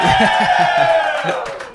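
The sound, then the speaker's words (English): A loud crowd cheers and shouts continuously in response to a shouted "Busch Light!" call, with scattered claps mixed into the roar, which eases slightly toward the end. “This is more, a few more claps.”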